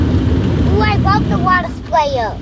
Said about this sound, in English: I love the water sprayer. So go drive your kids through a car wash.